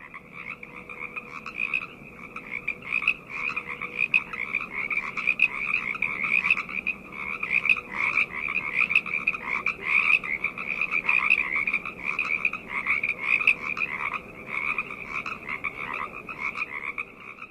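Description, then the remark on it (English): A dense chorus of frogs croaking continuously, their rapid pulsing calls overlapping in a steady, loud wall of sound with no voices. “You should find some frog noise and splice it.”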